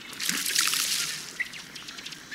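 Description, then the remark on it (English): A male duck, a bright rufous red duck with black and white head and sky blue bill, runs across the water with rapidly beating wings after its bubbling display, its feet pattering in a quick run of splashy slaps, then easing off into a softer trickle with a brief chirp near the end. “After the bubbling display, the male will usually run across the water with rapidly beating wings, his feet putt-putting like a little motorboat.”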